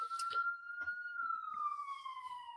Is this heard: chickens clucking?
no